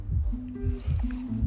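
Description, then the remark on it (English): A steady heartbeat thuds in low, muffled pulses, fairly loud, repeating in an even rhythm over a faint sustained tone. “The sound of a loved one's heartbeat tugs at your heartstrings and may also lower your heart rate.”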